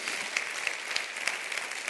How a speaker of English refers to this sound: Clap your hands to that right now because that is the truth.